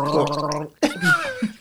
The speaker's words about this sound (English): Don't spit all over the thousands of dollars of equipment. I did not spit. I gurgled.